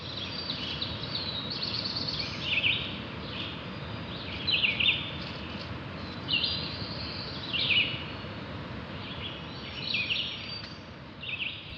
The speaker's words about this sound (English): thanks to Laurel for the recordings of birdsong you heard in this episode. Here are some more now.